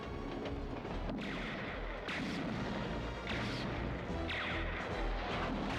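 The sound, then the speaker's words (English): A train exploding: loud, rumbling blasts and crashing debris in a continuous roar, with several sharper bursts punching through every second or so. No voices can be heard. “That train blew just in time.”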